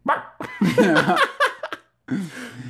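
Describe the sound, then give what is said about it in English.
A person mimics a dog's bark with a few short, throaty vocal bursts, mixed with laughter, then a brief pause before one more voiced yelp. “Give me what's your best dog, Ruff? Give me a Ruff.”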